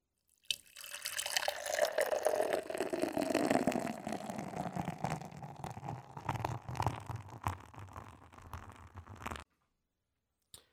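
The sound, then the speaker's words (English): A hazy beer from Beer Zombies pours into a glass in one steady stream for about nine seconds, with a gurgling, fizzy splash that shifts in tone as the glass fills, then stops abruptly. No one speaks. “The first one's poured out. It's a fucking hazy.”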